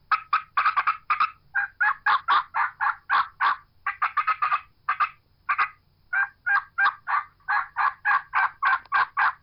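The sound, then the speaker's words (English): A wild turkey call mimicking an aggravated hen that has been challenged by, or is challenging, another hen: rapid, sharp cutting clucks break into a steady run of loud excited yelps, continuous for several seconds with no talking. “she's aggravated. There's another hen that's challenged her, or she's challenging another hen. She's going to cut an excited yelp.”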